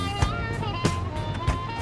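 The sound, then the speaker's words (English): A car engine runs steadily, a low droning rumble with a few brief clunks or knocks breaking through about every half second. “What's this? What? This car. This stupid car.”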